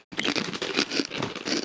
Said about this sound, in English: These are crunchy as fuck. They're not bad. They're like a kettle chip, kind of.